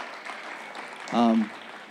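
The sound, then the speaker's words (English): An audience at Highlight Church claps steadily to welcome first-time guests, a dense, even patter of many hands lasting the whole moment, with a brief voiced call or cheer rising over the clapping midway through. “Let's give our first-time guests a hand clap.”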